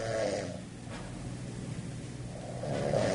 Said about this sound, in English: you are probably right now snoring and peeling the paint off the wall